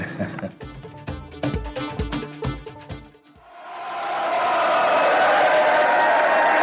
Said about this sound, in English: This is after the match. The players are coming out, heading back to the bus. Practically everybody is here. The fans are all here cheering them.